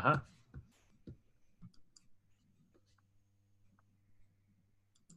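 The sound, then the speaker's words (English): Two dice are rolled for a fortune roll; they rattle and clatter onto a hard surface: a sharp burst of clicks, then a few lighter taps as they settle, fairly quiet over a faint low hum. “You wanna give me a 2D roll? Same thing, fortune roll, just two dice this time.”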